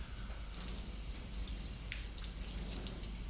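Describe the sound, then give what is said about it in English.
Tap water runs steadily, splashing and spattering as hands are rinsed under the stream, held higher than the elbows so the water drips towards the elbow, with irregular drips and splashes over a constant low rush. “Now rinse off, always ensuring that the water drips towards my elbow.”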